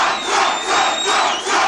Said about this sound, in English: That's the legions of faithful fans, Trumpites everywhere, cheering for their man who's, I mean, swept Nevada in what you could call a landslide.